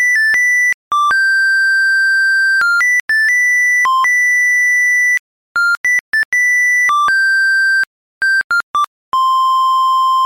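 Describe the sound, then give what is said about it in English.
A monophonic ringtone plays a pop melody in bright, buzzy electronic tones, one note at a time, with held notes and quick runs separated by brief gaps. It's loud and clear, with no voices. “In the spirit of 2003, here is the ringtone version of this song.”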